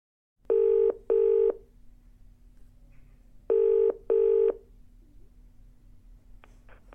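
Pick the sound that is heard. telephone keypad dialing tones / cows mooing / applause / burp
telephone keypad dialing tones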